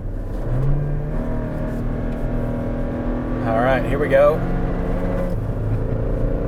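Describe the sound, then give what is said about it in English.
A pickup truck engine with a manual transmission revs up steadily under acceleration, its low droning tone climbing as the driver works through the gears, with people talking briefly over the engine noise from inside the cab. “That's got genuine good power.”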